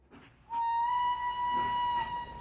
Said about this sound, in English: I stood on the platform as the train whistled and lurched from the station.